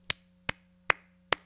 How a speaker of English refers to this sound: Why are you clapping? Hopefully you can hear that in the microphone.